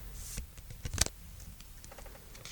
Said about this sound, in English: I want card shuffling ASMR. That's what this is. Okay. I love the sound of card shuffling.